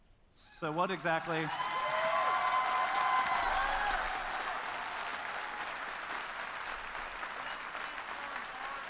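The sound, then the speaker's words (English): Loud applause and cheering from a large crowd in a room after a speaker apologizes and accepts accountability rise quickly, with a few shouted whoops early on, then settle into a steady, sustained wash of clapping that slowly fades. “I don't get the cheering for someone apologizing.”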